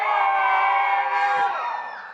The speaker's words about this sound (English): But you need to watch my hand. When my hand is up, you can scream. When my hand goes down, you gotta cut it.